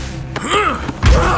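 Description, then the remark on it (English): A strained, rising-and-falling groan between sharp knocks, then a heavy, booming thud as a man slams a person against a door, with a low rumble lingering after the impact. “He slammed me against the door, hands around my throat, and then pushed me down to the ground.”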